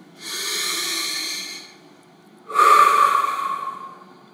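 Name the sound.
slow deliberate breathing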